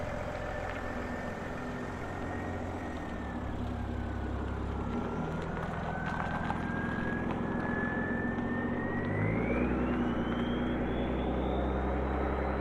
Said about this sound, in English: It was a big old car, perhaps a Mercedes. Driver unseen, but he, I simply assumed, a man involved in organized crime, saw me in the headlights, pointing a furry windshield directly at him. He drove away slowly